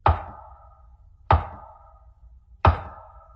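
Three loud, slow, distinct knocks on wood at the head of a bed, evenly spaced about a second apart, each a sharp hit followed by a brief hollow ring that fades before the next. No voices.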